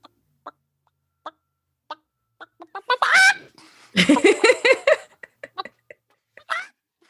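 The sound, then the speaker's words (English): A person imitates a chicken: scattered short clucks build into a loud, drawn-out squawking cackle, then taper back into a few quick clucks. There is no other talking. “And then you got the chicken call of like”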